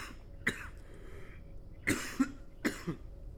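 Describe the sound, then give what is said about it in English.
A person coughs three times, with short harsh bursts spaced a second or so apart; the later coughs come as quick doubled hacks. No one speaks. “No, I'm just coughing.”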